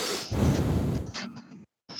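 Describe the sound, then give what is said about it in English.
Heavy breathing from a caller over a phone line: a long rushing exhale, a brief pause of dead silence, then another breath starting, muffled and noisy. “Sounds like he's washing his hands. And breathing.”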